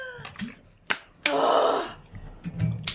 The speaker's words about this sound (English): And I lay the orb on top of her chest. And I say, Alakazam! Aludra gasps a deep breath.